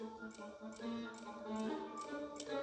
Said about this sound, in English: Tick-tock. Is that the clock?